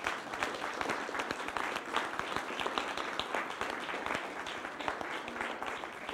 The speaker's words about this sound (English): Veterans, thank you so much. And can we give them another round of applause?